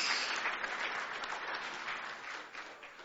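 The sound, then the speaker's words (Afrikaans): An audience at a church service claps and cheers together after the preacher urges them to rejoice, a dense, steady wash of applause that stays loud throughout with slight swells and no one speaking over it. “kom aan, juig so bietjie man, glo jy dat die Here jou antwoord.”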